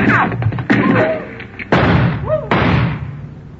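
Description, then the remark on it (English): Four loud, sharp gunshots ring out at uneven intervals, each leaving a short echoing decay, with faint whining ricochets after a couple of them and no talking. “Dr. Mitter left in the direction those shots came from.”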